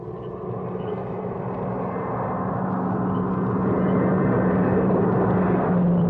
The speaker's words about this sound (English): There comes a car from town now. Yeah. That's the one we're waiting for.